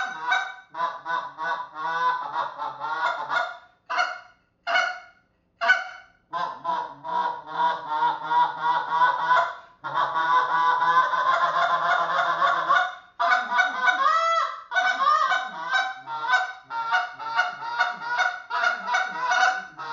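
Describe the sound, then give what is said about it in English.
An acrylic goose call, straight out of the package, blown loud, running rapid honking clucks in quick bursts with a few longer drawn-out moans mixed in, imitating a goose with no talking. “See, it has good cluck and moan to it. That's coming right out of the package, my friend.”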